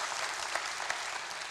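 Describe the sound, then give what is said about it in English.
An audience at Woodland Hills church applauds to welcome a new member, a steady, dense wash of clapping, with a few sharper claps standing out above the even patter across the whole stretch. “If you receive her, would you say amen? Clap, amen.”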